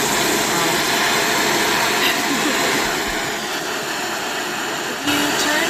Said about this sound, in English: If you turn the flame down a little bit, it won't be quite as loud.